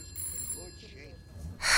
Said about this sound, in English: The phone rang from the other room.